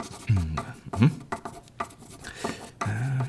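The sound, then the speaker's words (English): A pen scratches across a scrap of paper in short, uneven strokes as directions are written down, fairly quiet, with a few brief murmured vocal sounds mixed in between the scribbles. “I'll write down directions on this scrap of paper.”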